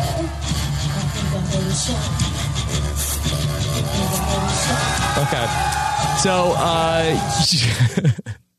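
Loud, dense live concert audio from a concert the night before: distorted rock music plays continuously while a crowd cheers and shouts beneath it, all recorded from within the venue before cutting off abruptly.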